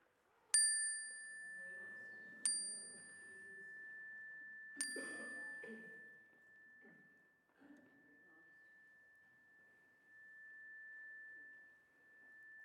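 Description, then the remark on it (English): A bright chime is struck three times a couple of seconds apart during a spoken prayer, its clear tone ringing on and slowly fading, while several quiet voices murmur softly beneath it. “I invite you to think of the names in your hearts, the people and the places for whom you have a prayer today, and speak them aloud as the chime rings, if you wish, so that we can hold them with you.”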